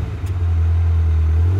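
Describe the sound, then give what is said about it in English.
A woman's car engine turns over and settles into a loud, low rumble that builds slightly as it revs while she drives away, with no voices present. “the woman started her car and left the area as soon as she could.”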